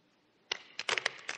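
A deck of playing cards being shuffled twice: quick bursts of crisp, papery flicks and snaps in an uneven rhythm, moderately loud, with no voices.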